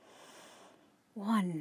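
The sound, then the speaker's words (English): A steady, airy breath drawn in through the nose for most of a second during a breathing exercise, fading out before a person begins speaking. “Here we go again. Breathing in.”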